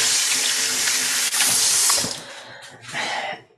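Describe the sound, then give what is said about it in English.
Liquid pours from a teaspoon into a bowl in a steady, hissing splash that thins out briefly near the end, then surges again before stopping. No one speaks. “And we're just going to pour that into the bowl.”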